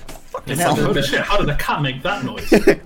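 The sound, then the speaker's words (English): A person vocalizes a loud, drawn-out roar imitation, rough and throaty, lasting a couple of seconds with a brief break and a final gruff burst near the end. “Just step up and just let out this bellow from your gut. Just this huge roar, and he's just like.”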